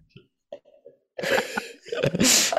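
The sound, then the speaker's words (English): After a few faint, soft vocal murmurs, a person lets out a loud, drawn-out breathy yawn with a voiced, groaning tone that swells in two long waves. “That's the reason why he also covered his face, so people do not see him yawn.”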